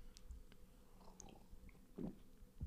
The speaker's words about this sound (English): My drink today is non-alcoholic malt beverage, lemon flavored. And let me take a sip.